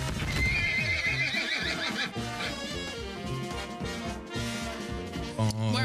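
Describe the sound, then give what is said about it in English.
A horse whinnies loudly with a long, wavering neigh while hooves clip-clop in a steady rhythm, followed by another short snort and whinny at the end. “I know you're excited, but please, sir, hold your horses. They're too heavy.”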